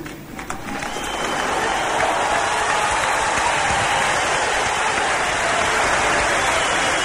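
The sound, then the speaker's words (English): A huge crowd in the amphitheater at the Union Buildings, South Africa, rises after the presidential oath of office and breaks into applause with stamping feet, swelling within the first second into a loud, dense, unbroken roar of clapping that holds steady throughout, with no voices. “The entire amphitheater here at the Union Buildings rises and claps to a man and a woman, and the feet are stamping.”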